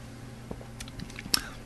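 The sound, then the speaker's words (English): Quiet slurping of a stirred drink from a cup: a few short, wet sips and mouth clicks spread over a second or two, with one sharper slurp near the end and no talking. “I'm just going to slurp it out of the cup, if that's all right.”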